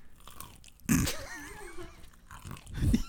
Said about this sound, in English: Yes, I can very much hear the crunching of your chicken tender.